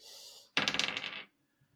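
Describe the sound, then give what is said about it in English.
Several dice clatter onto a table in a quick burst of rattling clicks lasting under a second, fairly loud, then stillness. “Hold on, I dropped my dice here.”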